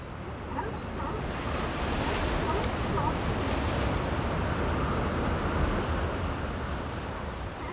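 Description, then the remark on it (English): Steady, roaring Pacific surf on a secluded beach at Big Sur on the Central California coast, a continuous wash of breaking waves with a bit of wind, while faint barking from sea lions sits low beneath the crash of the water. “The mesmerizing sounds of the Pacific at Big Sur. If you listen closely, you'll hear some barking sea lions as well.”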